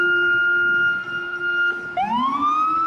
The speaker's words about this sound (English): You hear that siren?